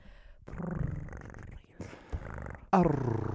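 A cat purrs in low, rumbling growls that come in uneven bursts, with a short pause in the middle and a louder, rougher stretch near the end.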